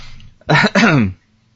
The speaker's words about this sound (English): So I'm done coughing here.